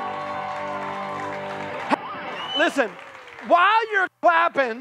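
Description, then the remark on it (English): An audience claps in a steady, dense wash for about two seconds, then the applause cuts off and a person begins speaking over the quieter background. “while you're clapping”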